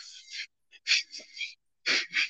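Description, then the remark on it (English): Heavy breathing into a microphone: loud, airy huffs and gasps in quick clusters with brief silent gaps between them, no talking. “But either way, that nigga got paid off for just breathing into the mic, nigga.”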